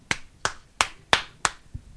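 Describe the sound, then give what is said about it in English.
A hand-made imitation of the smacking, slapping sound of sex from behind: five sharp, crisp slaps in a quick steady rhythm, followed by a softer, duller sixth hit. No one talks. “Like when you're fucking someone from behind and it makes that smacking, slapping sound when your balls hit the fuck in the back.”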